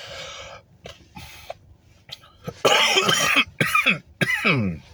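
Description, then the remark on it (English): A man coughs repeatedly in harsh, raspy bursts after smoking a blunt, with short throat-clearing rasps and breaths between the fits. “I'm coughing because of the chronic, by the way.”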